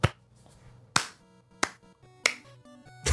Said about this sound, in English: Clap. Slow clap.